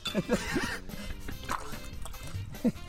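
A person snorts spa water, making wet snorting and gurgling bubbles in a few short, irregular bursts, with murmured voices in the background.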